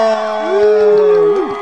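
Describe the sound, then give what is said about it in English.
A brief burst of audience cheering from a played audience clip, with whoops and sustained excited voices rising and falling together, loud, lasting under two seconds. “if you have that audience member, if you have the audience clip, do we have an audience in the background there that can actually, you know, give us an applause?”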